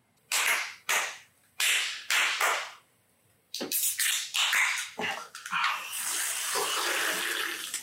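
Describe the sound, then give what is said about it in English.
A few short, splashy bursts of alcohol being poured, then a steady pour that runs for several seconds, and the drink is sipped. No one speaks. “You ever notice the first sip we take every time is like we haven't had water in 4 weeks?”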